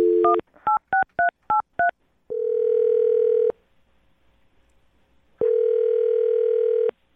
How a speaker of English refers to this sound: I'll dial the phone number and get him on the phone and find out if something did go wrong on your date, okay? Okay. Here we go.